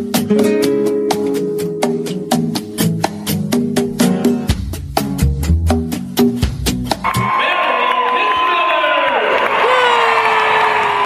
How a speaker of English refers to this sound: I love that opener with all the cheering.